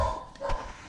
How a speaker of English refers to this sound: That's my dog barking.